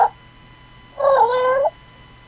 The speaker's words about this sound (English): He meows. It's great. And he hisses.